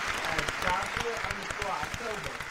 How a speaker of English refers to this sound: Round of applause.